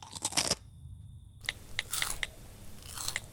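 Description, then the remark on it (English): Someone crunches crisps from a bag: a quick cluster of sharp, crackling bites, a brief pause, then several more crisp crunches at an uneven chewing pace, with no talking. “What's the bag of crisps for? I was hungry.”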